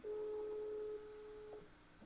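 phone call ringing tone

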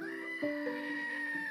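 goats bleating

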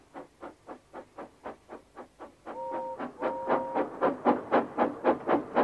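steam engine whistle

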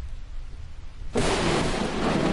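lightning strike thunder crack

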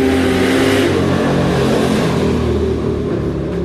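car engine revving nearby

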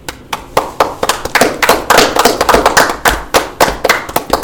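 hand clapping

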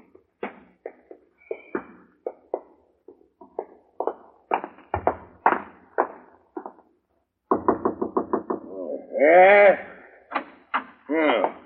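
knocking

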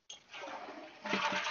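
toilet flushing

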